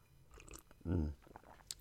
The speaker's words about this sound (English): Okay, gonna have a sip of my coffee. Wait a second.